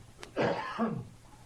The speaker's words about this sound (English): Excuse me. I should just let you talk because I started coughing all of a sudden.